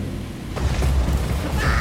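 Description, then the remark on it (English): A lightning strike in a rainstorm over an open field, with a loud, deep thunder rumble that swells after a sharp crackling onset and keeps rolling heavily through the whole moment, with no voices. “Don't run into that open field! You'll get struck by lightning!”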